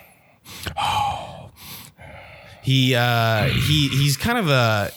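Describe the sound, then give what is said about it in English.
Heavy, rough breaths from a man inside a house huff loudly right up against the microphone in several quick bursts, then give way to a drawn-out, strained voiced sound that wavers in pitch. “He's like breathing really heavy right next to me, trying to listen onto the conversation.”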